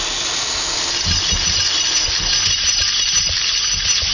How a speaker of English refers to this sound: let's open up the treasure chest.